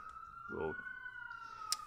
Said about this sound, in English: I need to let, there are clearly five police cars driving by. Yeah, I heard that.